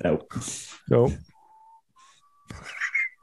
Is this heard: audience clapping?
no